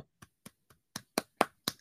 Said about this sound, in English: Clap it up for that.